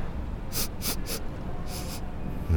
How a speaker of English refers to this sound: Dexter starts sniffing for evidence.